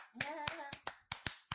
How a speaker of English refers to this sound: Yeah. Hand clap.